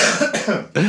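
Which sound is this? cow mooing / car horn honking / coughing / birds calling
coughing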